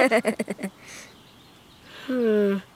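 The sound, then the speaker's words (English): Wild geese honk in a quick burst of five or six squeaky calls, sounding like a dog's chew toy or a rubber duck, then fall quiet before one longer, drawn-out honk rings out clear. “Those are wild geese. They're not super squawky, though. They sound more like a dog's chew toy.”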